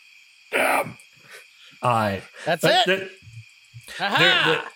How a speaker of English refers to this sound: Crickets are starting to chirp. The sun is definitely getting low on the horizon.